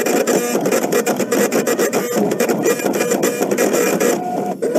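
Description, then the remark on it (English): A computer printer runs steadily, its mechanism whirring and clattering in quick repetitive bursts as pages feed through, loud with no voices. “He looks rather stunned, and immediately the printer's doing its dance, and he's got the original files he wanted that say...”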